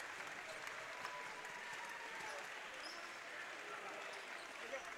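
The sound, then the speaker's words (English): Steady, sustained standing ovation from the Hopewell-Loudon side of a large crowd at a basketball game against Riverdale, a dense wash of clapping filling the whole stretch, with faint crowd murmur and an occasional ball bounce beneath it. “gets a nice standing ovation from the Hopewell-Loudon side of the crowd.”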